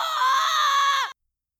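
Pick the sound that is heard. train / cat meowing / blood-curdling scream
blood-curdling scream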